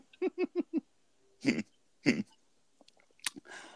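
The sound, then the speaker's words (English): Drinking from a bottle of Corona beer: four quick rhythmic gulps, then two louder swallowing, breathy sounds, followed by a few soft clicks and a short exhale. No one speaks. “I'm sipping on this Corona right now.”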